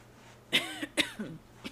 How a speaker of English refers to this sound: I was just coughing. It was a little saliva or something in the back of my throat just flapping around.